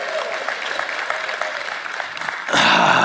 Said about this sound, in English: How about a round of applause for the coffee bar being open again?